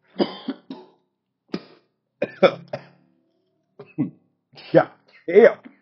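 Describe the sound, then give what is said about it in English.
A person coughs hard in a raspy fit after taking a hit of smoke, with several uneven clusters of harsh hacking coughs and brief pauses between them, plus some throat clearing. “The coughing dog.”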